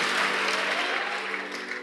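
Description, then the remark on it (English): A crowd applauds, a dense, steady wash of many hands clapping that holds at an even, fairly loud level throughout, with a faint low hum beneath it and no talking. “Clap for her.”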